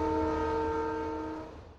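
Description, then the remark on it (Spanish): A steam locomotive of the Southern Fuegian Railway, the End of the World Train at Ushuaia, the world's southernmost active railway, lets out a steady, sustained whistle, several bright tones blended into one chord over a low mechanical rumble, holding loud before tapering slightly at the end. “Originalmente construido para servir de canal de transportación de materiales al penal de Ushuaia, la locomotora de vapor representa la línea de ferrocarril activa más austral del mundo.”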